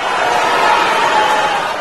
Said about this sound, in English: From the Democrats' California convention, here's John Hickenlooper getting booed after saying socialism is not the answer.